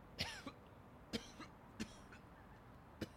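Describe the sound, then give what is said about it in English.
Four short, sharp coughs spaced unevenly over a few seconds, moderately loud, with a raspy, throaty edge and quiet background in between. “when are you going to get that cough checked out?”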